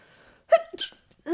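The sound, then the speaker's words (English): A small, stifled sneeze, a quick catch of breath bursting into a brief, muffled 'choo', with a short vocal sound starting just at the end. “I thought I sneezed like a mouse, but someone won the mouse sneeze competition.”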